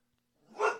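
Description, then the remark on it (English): A pet dog lets out a single bark, swelling quickly and then trailing off, heard on its own after a brief moment of near silence. “That's our doggie.”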